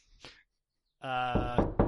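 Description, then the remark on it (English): A single sharp knock on a door, a pause, then a few more heavy knocks landing over a loud sustained moaning, wailing tone. “excuse me, I've got a knock at my door here.”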